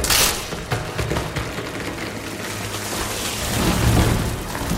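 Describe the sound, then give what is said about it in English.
A sharp, deafening crack bursts out in a forest as a massive creature smashes through the trees, followed by a sustained crashing of splintering wood with scattered snaps over a deep, rumbling roar that swells again near the end. “A deafening crack echoed through the forest, followed by the sound of splintering wood.”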